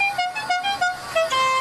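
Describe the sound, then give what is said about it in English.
A coffee truck horn plays a quick, bright run of tonal notes that step up and down in pitch, ending on a longer held higher tone. It is fairly loud and has no talking over it. “What about this horn?”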